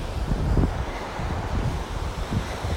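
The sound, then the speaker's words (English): Steady, rumbling surf of ocean waves washing onto a beach during a morning walk along the beach, with gusty wind buffeting the microphone throughout. No voices, just the continuous low roar of the sea. “It was really nice to hear the background and the foreground. So the waves”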